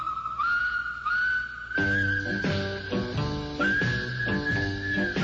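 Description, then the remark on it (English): A clear, sustained whistled melody by a singer on a record, with smooth slides between notes, joined after a couple of seconds by a steady instrumental backing that plays on beneath it at a fairly loud level. “He did the whistling on this record.”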